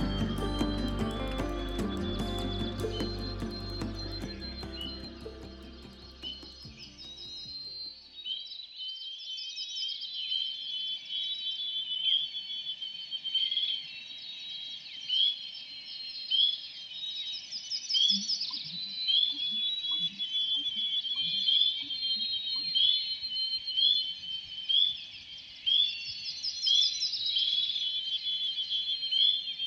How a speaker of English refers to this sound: enjoying the solitude and serenity of dawn next to a backcountry lake